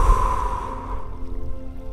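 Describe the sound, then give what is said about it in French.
A deep, airy breath, drawn in and slowly let out, soft, as part of a guided breathing exercise, over a steady low tonal hum with no talking. “Inspirez, puis expirez.”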